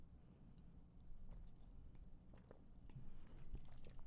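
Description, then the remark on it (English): Someone chugs a drink, with a few soft, irregular swallowing and mouth sounds over a low background hum. No one speaks. “Chugging it is rough. It tastes worse when you chug it.”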